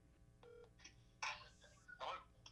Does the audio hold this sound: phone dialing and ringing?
yes